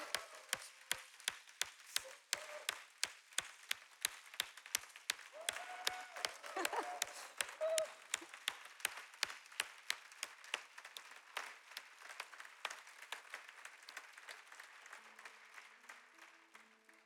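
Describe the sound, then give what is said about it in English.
An audience applauds a group of women steadily for several seconds, a dense wash of clapping with sharp, evenly spaced claps cutting through in a regular rhythm, easing off slightly toward the end. “Would y'all join me in giving these ladies one more round of applause?”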